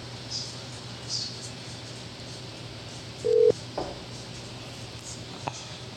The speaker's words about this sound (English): So nice to hear a ringtone again.